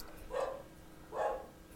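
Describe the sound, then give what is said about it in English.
A dog barks twice in quick succession, two short, excited woofs roughly a second apart, fairly soft against a quiet background. “My dog's excited.”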